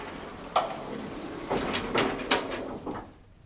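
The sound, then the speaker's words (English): Elevator doors on the fifth floor slide open with a series of soft mechanical clunks and a brief rumbling glide, followed by a fading hum; no one speaks. “Let me just check to make sure she's not hiding behind the doors.”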